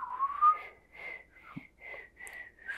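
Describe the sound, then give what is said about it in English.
Someone whistles in a string of breathy, uneven tones, about six short bursts with airy hiss around them, sounding like a shaky beginner's attempt rather than a clean tune. “And now I'm starting to know how to whistle, because you used to do it.”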